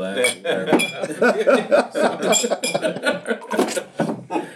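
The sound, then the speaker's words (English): An empty glass clinks and taps repeatedly over several seconds, bright, with ringing high tones between hits while people talk and murmur underneath. “That's it's an empty glass.”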